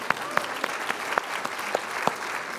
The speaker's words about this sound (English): Yeah, we should clap for that. Come on, that's really good.